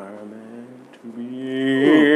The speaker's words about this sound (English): Did you just fart? No, I yawned. Oh, I was about to say, damn. Why'd you sound like the fucking Cowardly Lion, man? Because I didn't want to yawn. But I couldn't stop it.